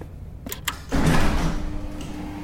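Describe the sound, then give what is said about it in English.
A heavy metal bay door slowly grinds open with a loud, sustained groaning rumble after a couple of sharp clicks, its strained creak droning on steadily for over a second. “The door slowly opened, strained and groaning.”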